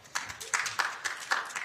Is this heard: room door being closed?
no